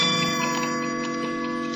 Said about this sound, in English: And the clock strikes and it's too late and you're a prisoner again. Locked up 9 to 5.